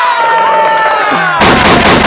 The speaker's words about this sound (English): Give it, get some gunshots for Luce